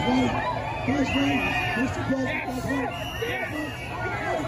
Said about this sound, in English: There he is waving. He's wearing a mask inside the car, and you have a bunch of Trump supporters outside cheering.